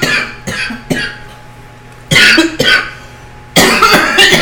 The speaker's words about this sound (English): It's the first time she coughed tonight, I may add. No, she gives little mini coughs. No. That's the first time she coughed for the night.